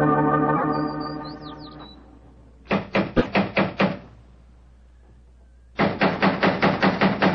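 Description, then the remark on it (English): Two rounds of firm, rapid knocking on the wooden door of a man's home, about seven raps each, separated by a pause and going unanswered, following a fading car-engine-like hum. “If he's home, why the devil doesn't he answer the door?”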